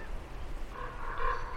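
Gulls, including black-backed, black-headed and common gulls, call out around Temple Bar in a few harsh, wavering cries that rise in the second half, set against a steady low rumble of outdoor background noise.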